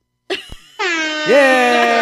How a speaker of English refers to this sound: Yeah! That's a air horn, motherfucker. Not a siren.